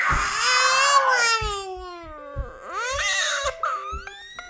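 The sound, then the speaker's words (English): Children scream in loud, sustained, high-pitched shrieks that slide up and down in pitch, with voices overlapping and a few low thumps breaking in underneath. They are screaming in competitive excitement during a guessing game at home. “Super competitive behavior. And lots of screaming.”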